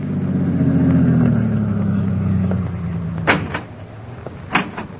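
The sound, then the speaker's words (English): A car engine hums and winds down as the vehicle with two men rolls to a stop at a farm entrance, followed by two sharp car door thuds a moment apart as they get out. “Then, 1 week later, Baker was standing at the farm entrance when two men drove up and got out of their car.”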